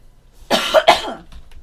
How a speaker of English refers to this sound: Can you cut my coughs out of the podcast?